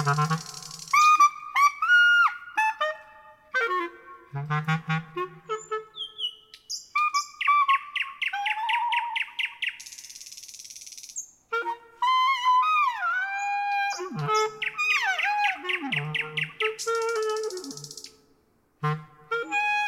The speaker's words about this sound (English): And so we can learn by just whether or not it's true or not true, just say, this bird is a musician, I'm a musician, let's play along together, see what happens.